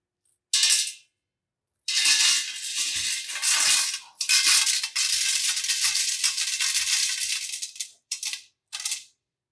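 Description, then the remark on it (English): A handful of coins clatters noisily into an offering collection box, first a brief drop, then a long, continuous jangling cascade, ending with two short final rattles. Loud, with no talking. “Once these coins were dropped into the box, if you wanted people to know that you had a lot to give, you would drop your coins in, sort of like this.”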